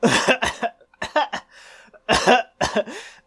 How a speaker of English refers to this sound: That was a lot of coughs. I'm not Danny DeVito. I think you coughed. Well, you know what I heard was you coughing once a whole lot.